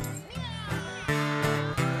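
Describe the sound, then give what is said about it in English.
People at a live song performance in Salmon Arm, British Columbia, mimic a cat's meow with a few drawn-out, wavering mews in quick succession, voiced fairly loud with no other sounds around them. “Give me a nice meow, go.”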